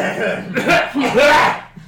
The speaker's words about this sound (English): And just clear her throat like obnoxiously.